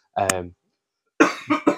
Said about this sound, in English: He's just dying over there. Got a little cough.